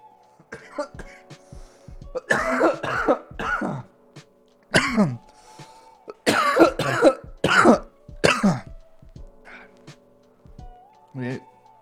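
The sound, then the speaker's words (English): Loud coughing from a person with a painful tooth comes in several harsh bursts and clusters, mixed with throat clearing and short pauses between fits, ending with a brief rough rasp. “Now it's like every cough too feels like a knife going into your tooth.”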